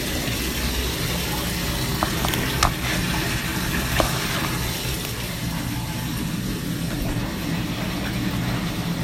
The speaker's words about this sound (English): I'm just going to let you kick it in here while I get my bath ready, and then we'll talk after the water's done running.